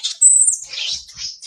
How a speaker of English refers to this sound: Ah, little Marley, don't get mad. Don't get mad. Oh, calm down. He's mad because I grabbed him. That's Marley, the marmoset monkey.